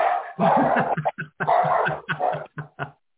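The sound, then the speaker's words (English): Dogs bark loudly at people who came up to the door in a rapid, agitated volley, a string of about ten sharp barks and yips with brief gaps between them and no voices. “I watched them come up to the door, and I'm not answering it, but the dogs I knew were about to light them up.”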